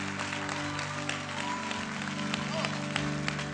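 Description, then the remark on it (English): An audience claps for the Lord in a steady, dense wash of applause that continues throughout, with a sustained low musical drone underneath and indistinct voices mixed in. “Give the Lord a big clap for her awesome life.”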